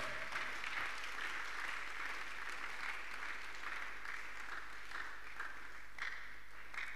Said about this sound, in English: Clap your hands for Jesus if you wish. Those who have buried their enemies, their clapping is different.